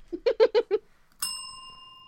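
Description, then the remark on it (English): A single bright bell strike rings out clearly and sustains with a long, fading shimmer, preceded by five quick rhythmic vocal bursts. “No bell. I do the bell.”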